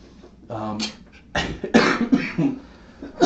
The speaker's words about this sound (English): don't make me laugh, man. It makes me cough.